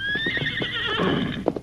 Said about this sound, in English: We'll see that your old horse gets green pastures. Little fella, that's about all we can do for you now.